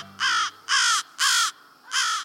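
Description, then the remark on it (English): Four loud, harsh caws from American crows streaming by overhead in the late afternoon on their way to their night roost, each a raspy burst about a third of a second long, clear with no talking. “American crows stream by overhead in the late afternoon.”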